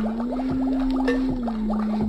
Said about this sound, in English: Notice what happens when I tap on the glass jar.